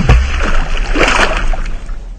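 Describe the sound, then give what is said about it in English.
A heavy splash as a body falls through ice into water, followed by a couple of seconds of churning, sloshing water, loud and without any voices. “Hey, well, this is something that I know something about, so let's talk about what happens to your body if you fall through ice into water and how to get out of it.”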